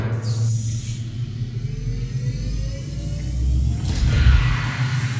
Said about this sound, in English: Hands and feet clear? Clear. Closing glass door.